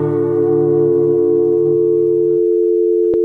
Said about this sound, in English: don't touch that tone. We'll call you up on your telephone. That dial tone,